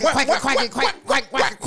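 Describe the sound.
A person imitates a duck with about six quick, nasal quacking sounds in a steady run, fairly loud, with no other sounds.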